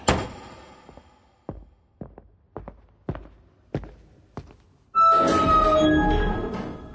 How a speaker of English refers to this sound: This door knocker must date from when Pluto was still a planet.